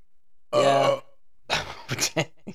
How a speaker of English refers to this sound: Stop burping on the pod.